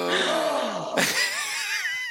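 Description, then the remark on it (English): Several voices let out an exaggerated, theatrical gasp together in mock surprise, with overlapping drawn-out vocal cries sliding in pitch, fairly loud, with a sharp breathy burst midway. “and when she says, everyone gasp.”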